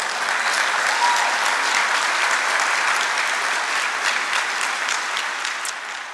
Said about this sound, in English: Clap for Jesus this morning.